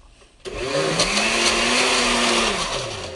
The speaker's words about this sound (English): I blended it a little bit, and now I'm going to process it a little more. You hear the blender go. I won't keep it on and record that for too long, but just for effects.